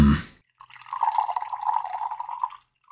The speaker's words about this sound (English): I just poured myself a glass of Lagavulin 16 with a little bit of water to cut the harshness and bring out the tannins and flavors.